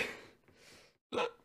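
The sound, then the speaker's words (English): A couple of soft, breathy exhales, a brief silence, then one sharp hiccup that jolts out loudly and fades quickly. No talking. “Let me try to get rid of my hiccups.”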